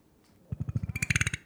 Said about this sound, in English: That was fucking gnarly. What the hell was that? A burp? Oh my god. I just opened my mouth. Sounded like trying to start a weed whacker. And it like didn't want to start.